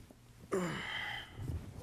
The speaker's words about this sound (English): we're both getting some yawns here and there. I think I'm kind of sleepy. I'm low-key sleep.